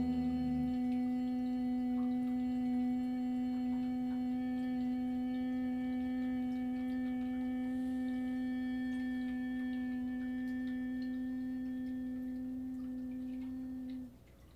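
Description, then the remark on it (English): A single steady hum, made during a breathing exercise, holds one low pitch for about fourteen seconds, even in loudness, then stops abruptly. No speech accompanies it. “And then again start the humming sound.”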